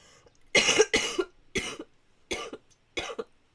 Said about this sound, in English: No, I was coughing. It was awful. I mean, do your listeners want to hear what you sound like when you're coughing and splurting away in the background? I think we should have a little sample of that since you have it.